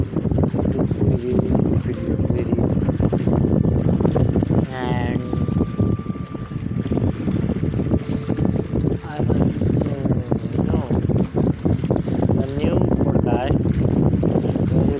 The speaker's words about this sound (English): The sea sound. I am now right now in that same place, and so connected to sit and talk.